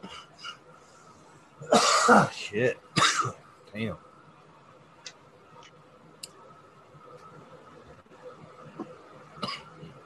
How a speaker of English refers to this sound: Them dabs been giving me a little bit of a lingering cough.